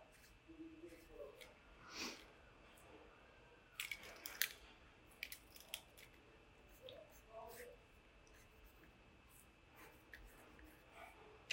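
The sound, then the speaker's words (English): A pen scratches across paper in short, irregular strokes and taps, fairly quiet, with pauses between bursts as someone rechecks a calculation by writing figures on paper. “Tell me how you did that without doing it on your paper, just because I can't see what's happening on your paper.”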